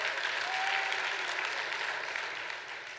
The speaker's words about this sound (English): Amen. Amen. Come on, let's clap to the Lord.